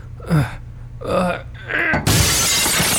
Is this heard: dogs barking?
no